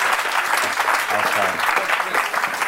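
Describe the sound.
An audience claps in a steady round of applause, a dense, continuous patter of many hands at fairly even loudness throughout, with faint murmuring voices underneath.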